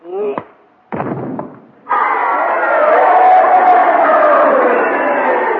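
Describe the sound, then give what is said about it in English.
Two sharp thumping hits land in quick succession, then a loud crowd at a fight bursts into sustained cheering and shouting that carries on steadily to the end. “You heard them cheering, didn't you?”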